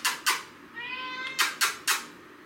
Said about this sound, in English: My cat would not be my cat if she didn't try to interrupt my podcast at some point.